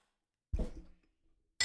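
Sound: glasses clinking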